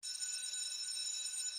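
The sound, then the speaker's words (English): A school bell in a school movie rings continuously for the whole clip, a bright, high-pitched metallic clatter at steady loudness with no pauses and no voices. “And lastly, it's time to, since this is a school movie, it's time to hear the bell.”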